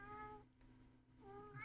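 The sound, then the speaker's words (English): A female pet cat meows in two drawn-out, tonal cries separated by a brief pause, clear and fairly loud with no talking over it. “my cat. And she's been being pretty noisy in here right now”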